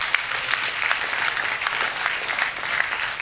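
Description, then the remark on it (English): An audience claps their hands for joy, a dense, continuous patter of many hands with a few sharper claps standing out, sustained at moderate loudness for the whole stretch with no talking. “Can somebody clap your hands for joy?”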